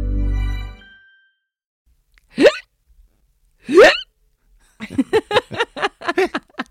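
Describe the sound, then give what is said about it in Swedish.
Someone fakes hiccups with their voice: two sharp, separate yelping hics, then a quick rhythmic string of about eight shorter ones, fairly loud, after a brief low rumble at the start. “Gud vad dålig du var på låtsas vilka”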